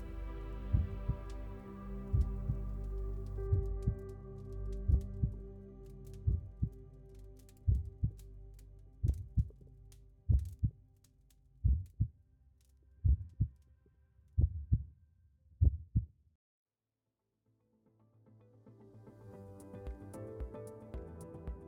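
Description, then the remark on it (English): A steady heartbeat thumps at a slow, even pace over a low droning hum, the beats growing louder before stopping abruptly, followed by a short silence and then a soft ambient hum. “And so to me, as a person who can see colors, how I would describe red would be that it's a heartbeat.”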